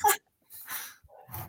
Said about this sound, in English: I got my dog locked up, so that barking that you hear in the background is my dog because I just left him with some food and I was like, I gotta go do a podcast. He's not very happy.